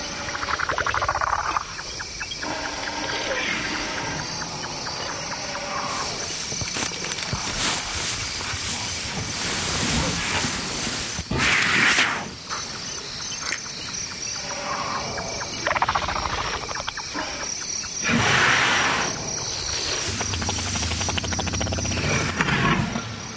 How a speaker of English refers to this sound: We leave you this week not far from Mount Kilimanjaro on the Masai Mara Plain in Kenya. Chris Watson quietly recorded a family of elephants that had bedded down in the rough grassland for the long African night.